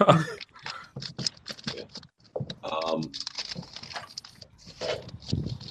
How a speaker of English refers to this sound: Crackling firewood out there, bitch.